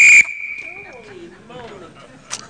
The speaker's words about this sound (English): You get whistled, right?